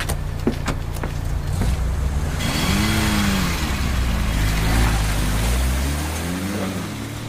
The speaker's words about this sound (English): Get that bloody car up here before they come over that bridge and get him back.